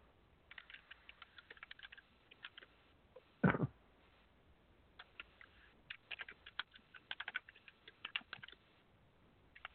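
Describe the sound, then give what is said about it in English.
Quick, irregular clicks of someone typing on a computer keyboard patter along at low volume, with one louder thump partway through; no one speaks. “I can hear somebody typing, but I can't.”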